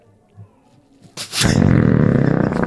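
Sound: belch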